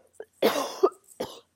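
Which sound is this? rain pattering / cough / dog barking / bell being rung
cough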